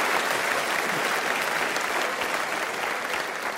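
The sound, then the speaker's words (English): Steady, dense applause from an audience, a loud wash of many hands clapping at an even level for a few seconds with no voices standing out. “So clap it up for my Filipino chink weird mix people.”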